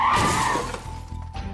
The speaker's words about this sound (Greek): κάνοντας το αυτοκίνητο να ντεραπάρει και να πέσει πάνω σε ένα δέντρο.